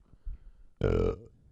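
A single loud, drawn-out burp bursts in close to the mic, lasting about a third of a second, after a few moments of faint low background murmuring.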